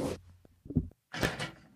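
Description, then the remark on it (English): Several dull thuds and knocks against an unlocked door, irregularly spaced, with a couple of louder rattling bursts in between; moderately loud, no talking. “Just stop banging on the door.”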